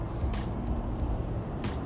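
A city bus on line 111 to Norwalk Green Line Station rumbles in with a steady low engine drone, and short bursts of hissing air from the brakes as it pulls up to the stop.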